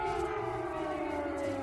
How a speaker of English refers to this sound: Those air raid sirens continuing over the country of Ukraine.